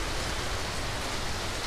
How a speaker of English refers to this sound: Oh, nice. Nice rainstorm.